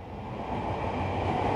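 A steady rumble of a commuter train rolling along the rails, a dense low roar with faint metallic hiss that swells slightly louder over the short stretch, with no voices.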